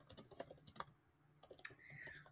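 Quick, irregular clicking of keys on a computer keyboard, fairly soft and close, with a brief pause midway and a low background hum underneath; no one speaks.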